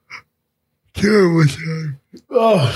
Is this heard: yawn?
yes